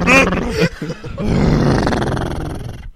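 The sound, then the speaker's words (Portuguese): A man imitates a horse with his voice, opening with a short, loud whinnying cry and then a long, raspy, breathy snort that fades out after a couple of seconds. “Como que é o cavalo da Pai faz.”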